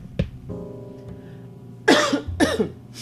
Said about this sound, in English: I did start getting a little cough, but I think that's just from drainage.